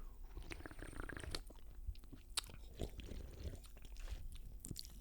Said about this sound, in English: Wait, let me have a sip.